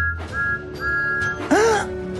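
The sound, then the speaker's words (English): Thomas the steam engine's whistle sounds at Tidmouth Sheds at night in two sustained, steady blasts, followed by a shorter swooping tone, fairly loud over a low rumbling background. “Then Percy heard a familiar whistle.”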